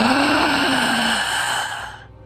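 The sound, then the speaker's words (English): A single loud, drawn-out gasping inhale of fresh air, raspy and partly voiced with a strained groan-like tone, held for about two seconds before trailing off; alone, with no talking. “When the grave robber cracked the seal to the casket, Phil shoved the lid open and took in a loud, gasping inhale of fresh air.”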